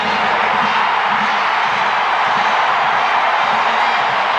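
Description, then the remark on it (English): The crowd at Yankee Stadium roars and cheers after the final out of David Wells's perfect game, the 15th regular-season perfect game in Major League history, in a loud, steady wash of noise that holds without letting up, with no clear individual voices standing out. “What a wonderful crowd.”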